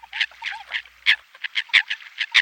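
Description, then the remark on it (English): American coots calling to one another on a still lake on a calm winter morning: a rapid, uneven run of harsh, raspy cackles, grunts and croaks overlapping one another, clear, with no voices present. “Ah, the cackling, grunting, and croaking of American coots calling to one another.”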